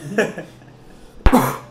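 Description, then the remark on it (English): A single sneeze from a man: a short voiced intake, a brief pause, then a sharp, loud, hissing burst that trails off over a fraction of a second. No one speaks. “Gesundheit, sir.”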